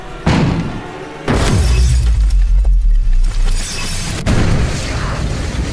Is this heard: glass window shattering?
yes